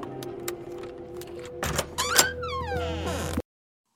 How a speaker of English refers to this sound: Hotel room door. Nice. Subtle squeaky door. Yeah, subtle squeaky door.